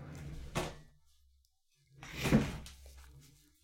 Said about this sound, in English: I wanted to get sound of me drifting. But I just rolled my chair into the wall by accident and I hurt myself.